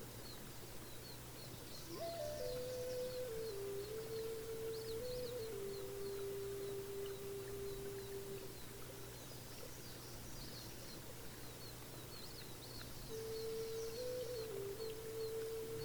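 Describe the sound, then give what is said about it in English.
A continuous outdoor chorus in spring: scattered high bird chirps over a steady pulsing insect drone, with long stretches of low, wavering frog croaking that fade out and return near the end. “The birds have returned, and you can hear the pulsing sound of insects and frogs croaking somewhere.”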